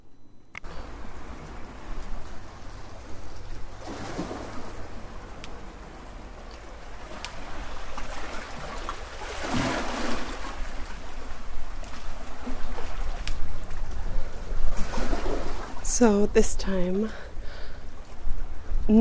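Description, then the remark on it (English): Steady ocean surf rushes and swells, with waves breaking on the shore in broad washes of noise throughout. A person speaks briefly near the start, and birds call over the water toward the end. “not using ocean sounds to make this podcast episode, but standing actually next to the ocean and listening to the sound of the waves, which I find is the most calming, relaxing sound you could listen to, and it's just so nice.”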